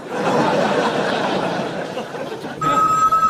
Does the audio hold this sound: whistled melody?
no